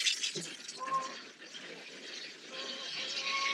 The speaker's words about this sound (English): During this episode, you've been listening to a feather dance song. This is part of the cleansing ceremony Micco Paul described.